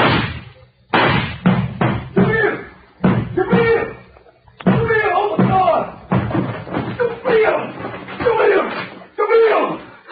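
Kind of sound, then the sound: household object, knocking on a door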